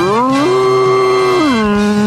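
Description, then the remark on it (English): A person does a long, loud cow moo in a Moo Match segment, a sustained throaty tone that swoops up in pitch, holds steady, then slides back down over about two seconds. “I have to admit, that was a pretty good moo by ….”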